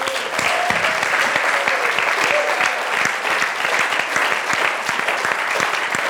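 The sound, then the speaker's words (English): An audience claps steadily in praise of the Lord, a dense wash of many overlapping hand claps holding at an even, fairly loud level with no voices standing out. “That's why I ask for you now to praise the Lord, clapping for all His love and grace.”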